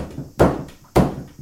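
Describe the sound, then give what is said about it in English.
Two heavy hammer smashes land about half a second apart, each a loud, sharp crack that rings briefly before fading, over a low background rumble with no talking. “That's a strong hammer. Let me just smash again.”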